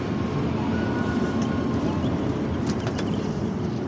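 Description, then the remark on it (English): Steady, loud rumble of a Japanese Shinkansen bullet train travelling at speed from Kamakura to Nagano, a dense low roar with faint higher hiss and whine that holds constant throughout, with no voices. “The trains are called bullets for a reason. They effortlessly hit speeds of up to 200 miles an hour, and their departures are timed to the second.”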